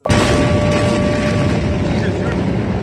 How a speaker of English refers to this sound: On this Tuesday night, an enormous explosion blasts through Beirut. Horrific disaster. Rubble everywhere. Buildings blasted open.